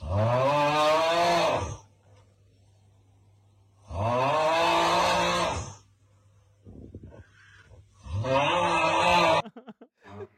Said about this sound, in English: This fucker is snoring, bro. He's just, in the original, he's just laid flat.